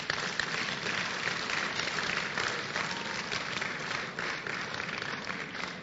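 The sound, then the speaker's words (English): An audience claps in sustained, dense applause, many hands at once forming a steady wash of clapping that holds at an even level for several seconds, with no voices standing out. “Clap for Jesus.”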